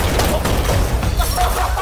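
A hammer smashing a glass piggy bank: a dense, steady burst of crunching and shattering noise that stays loud for the whole stretch, with bright glassy crackle over a heavy low rumble.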